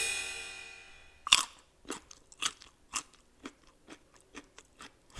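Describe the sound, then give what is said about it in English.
A fading ringing tone gives way to a sharp crisp bite into a carrot stick, followed by about eight steady, rhythmic crunchy chews, loud and with no talking. “This interruption is brought to you by carrot sticks.”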